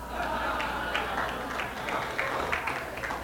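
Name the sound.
audience clapping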